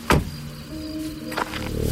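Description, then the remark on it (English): The door of a big late-1960s American car thunks shut with a deep, solid impact, followed by a low steady hum and a second, softer knock about a second later. “The door thunks shut with a satisfying sound big American cars made in the late 60s.”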